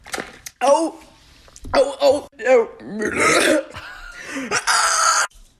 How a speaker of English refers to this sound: I've been trying to slam this bottle of pop, but it's hard for me because I have acid reflux. like really bad. So I'm just gonna see how loud I can burp after drinking this.